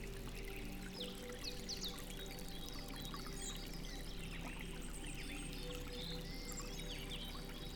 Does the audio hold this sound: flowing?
yes